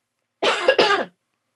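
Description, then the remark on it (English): A woman coughs twice in quick succession, fairly loud, the coughs muffled into her arm, with silence before and after. “She coughed into her arm, Dracula style.”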